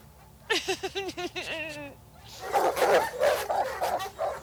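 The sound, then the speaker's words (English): Hounds give a quick run of high, whiny yelps, then break into a rough chorus of repeated barks that carries on, moderately loud. “I'm not having them dogs maul my extensions or bite me implant.”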